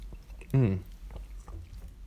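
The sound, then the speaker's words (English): A quick sip of water: one short, pitched slurp that slides downward in tone, followed by faint mouth sounds and low background rumble. No one speaks. “I will take a little sip of water now because it's late.”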